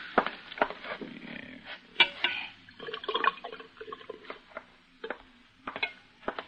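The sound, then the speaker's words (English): Water splashes and gurgles as it is poured from a water cooler into a cup, with irregular drips and small clicks over a few seconds and no voices. “And get some water from the cooler over there, will you?”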